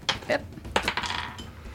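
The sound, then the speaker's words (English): Dice rattle and clatter across a hard surface during a tabletop role-playing game check, landing on 14, a few sharp clicks and taps bunched together in quick succession, fairly quiet, with no voices. “14 on the dice plus 7, 21.”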